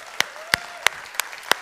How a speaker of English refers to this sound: So you have some incredible pastors. Can you do me a favor? Can we just give them a great big hand clap and honor them?